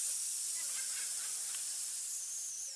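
A steady, sharp hiss of air escaping from a leaking air mattress, high-pitched and continuous for about three seconds, tapering slightly toward the end. No voices.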